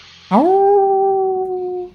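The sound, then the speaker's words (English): A single wolf howl swoops up sharply, then holds one long, steady note for over a second before fading slightly. It sounds clear and fairly prominent, with no voices or other sounds. “And you hear out of the edge of your hearing just this faint howl cutting through the air.”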